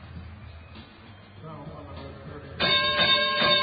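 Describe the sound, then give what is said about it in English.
A bright, ringing bell chime, the 30-point bell marking that someone somewhere in the NBA has scored 30, bursts in loudly near the end, sustained over the steady murmur of a crowded arena and broadcast background noise during a Jazz–Denver game. “30-point bell somewhere in the NBA tonight. Someone rang 30.”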